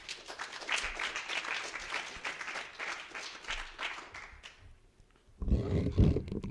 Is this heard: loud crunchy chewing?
no